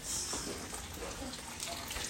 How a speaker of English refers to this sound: Ooh, I'm burning these plant-based eggs. Hear that sizzle. Use that in the track. I gotta turn them on high because they don't cook very well.